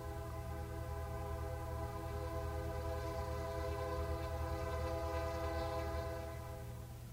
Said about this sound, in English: I hear our train, so pack your bags and grab your coat.